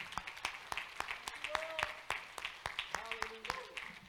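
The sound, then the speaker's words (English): An audience at a church service claps their hands in praise, in uneven, crisp bursts, sharp hand claps overlapping throughout, while brief voiced tones and murmurs rise in the background. “Clap your hands one more time and give him praise in the house.”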